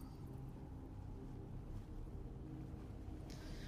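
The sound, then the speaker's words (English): A steady, low bubbling of liquid churns continuously throughout, a dense rumbling wash with no pauses and no voices, like a large vessel quietly boiling or gurgling. “And you can hear bubbling.”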